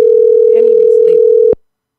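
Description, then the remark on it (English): A phone line rings out with one loud, steady ringback tone that cuts off abruptly after about a second and a half, with a faint voice murmuring beneath it; an outgoing call to the caller's 23-year-old brother goes unanswered. “All right, if he call back, he do. If he don't, he don't.”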